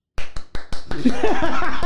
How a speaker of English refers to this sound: Let's give that an official round of applause for the Dave Chappelle opening monologue on Saturday Night Live.